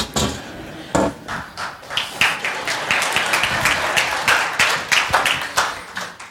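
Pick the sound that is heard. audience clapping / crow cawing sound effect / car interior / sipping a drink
audience clapping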